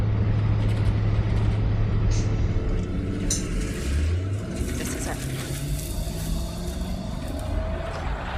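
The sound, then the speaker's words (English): Steady low engine drone and road rumble from inside a moving 1990s truck with a tape deck, with shifting tonal hums as the engine revs, continuous and fairly loud throughout. “I love a good 90s truck.”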